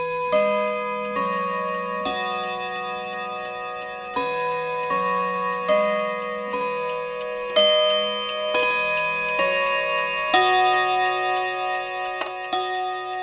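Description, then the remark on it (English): An elaborate ceramic mantel clock, its face ringed by four nude figures hoisting a golden baby aloft, chimes a slow, ringing melody, each bright bell tone sustaining and overlapping the next at a steady pace, clear with no voices. “As an example, they pointed to an elaborate ceramic clock on the mantle, featuring a clock face ringed by four nude figures hoisting a golden baby aloft.”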